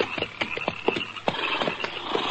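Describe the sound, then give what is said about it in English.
Horse hooves clop on hard ground in a quick, uneven patter as the horses are pulled up to a stop, several sharp hits with a faint steady hiss behind them and no voices. “Hold it. Pull up them horses.”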